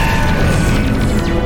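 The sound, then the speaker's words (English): A loud, sustained roar of video game explosions as a cloud of blue bolts from the Allied fleet hits the Reapers, dense low rumbling booms layered with crashing noise and faint high shimmering tones, steady in volume throughout with no speech. “We're seeing hits. There's big explosions.”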